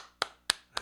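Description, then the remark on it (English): Three sharp hand claps in a steady, evenly spaced rhythm, crisp with no talking, imitating a repeated slapping sound. “And he wakes up, starts clapping like he thinks they landed.”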